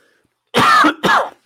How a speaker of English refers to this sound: Try not to cough into the mic. Sorry about that, folks. Ooh, just too much talking over here.